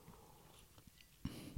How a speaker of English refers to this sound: Wait. I want one more sip.